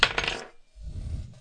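Dice clatter onto a hard table: a bright burst of clicking impacts, then a low rumbling roll as they tumble and settle, fairly loud with no voices.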